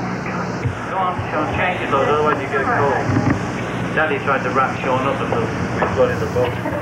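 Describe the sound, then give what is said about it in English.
A boat engine drones steadily throughout while out at sea, fairly loud, with wind buffeting the microphone and people talking over the mechanical hum. “should we turn the engine off, because yeah. the noise is getting on”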